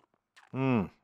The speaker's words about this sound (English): Coffee. Do you enjoy my slurping sounds?